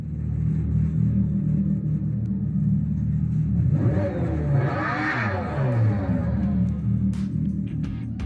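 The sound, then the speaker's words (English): An artificial car engine soundtrack piped in at a vehicle debut, not matching the vehicle's motion, rumbles steadily, then revs up and back down in a sweeping pitch rise and fall midway through, fairly loud, with no talking over it. “but what was wild was they pipe in the sound, and the sound isn't even relative to the motion of the vehicle.”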